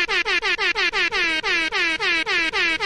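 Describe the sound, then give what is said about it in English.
A rapid string of loud air horn blasts, about a dozen short, brassy honks fired off back to back in a steady, insistent rhythm with no talking. “I needed a few extra air horns for that one.”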